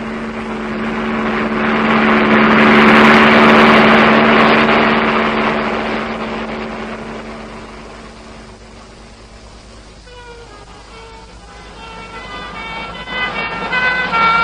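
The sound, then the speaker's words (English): A broad engine roar swells and fades, then ambulance sirens on a road, heading east, wail with rising and falling tones in the second half, moderately loud over a low steady drone. “The ambulances are going east.”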